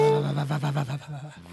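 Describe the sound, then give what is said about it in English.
Kitten sounds slowed and pitched down into a deep, drawn-out moaning growl with a wavering tone and several pulsing swells, loud and alone, ending in a brief lower grumble. “Well, isn't it just nice to know that the dark side of the Force is kittens?”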